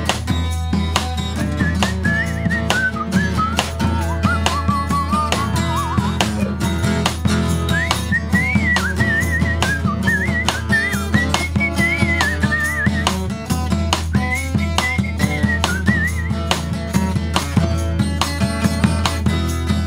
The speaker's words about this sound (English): Great stuff. Nice whistling there